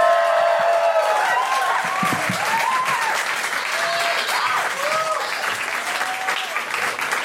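Steady, dense applause from an audience lasting several seconds, with scattered high whoops and cheers rising above the clapping. No one speaks.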